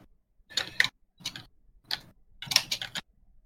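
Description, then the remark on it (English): Computer keyboard typing in short bursts of crisp, clicky keystrokes, four quick clusters separated by brief pauses, fairly quiet with no voices, as the typist searches for how long ago a song was released. “Yeah, you can hear my keyboard going.”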